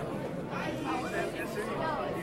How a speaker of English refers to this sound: I guess I was a little off on the thinking it was going to start thing. That's all right. Crowd's still filing in.